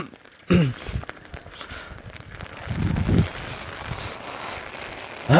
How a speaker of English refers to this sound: It's Saturday, February 22 or 22nd, 2020, 8:15 a.m. I'm heading out right now. It's raining. It's raining a lot.